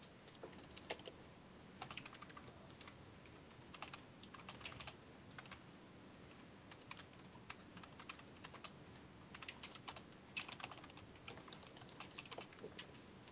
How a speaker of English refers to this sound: People are typing.